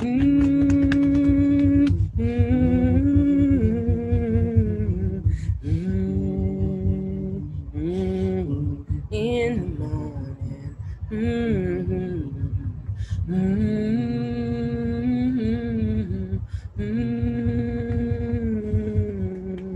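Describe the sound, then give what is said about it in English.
Steady humming glides between sustained pitches in short phrases, with a low pulsing throb underneath and occasional soft fingertip taps on EFT tapping points on the body. “Let's stop with the tapping, and we're just going to see if we can go junk, junk, junk, focusing the hum in those places, and when we get into the gut, see if you can.”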